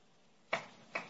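Two sharp claps about half a second apart ring out during a church service, each with a brief echoing tail, fairly faint and with no talking.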